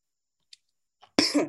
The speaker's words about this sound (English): I had to cough for a second, but yeah, that's my four: Duke, Arizona, Gonzaga, and then the other two I mentioned was Purdue.